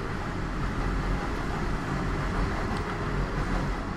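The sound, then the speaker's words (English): A train rumbles by, a loud, steady, heavy low roar with a grinding mechanical texture that holds for the whole stretch, with no voices. “But this week hey, it's our friend the train.”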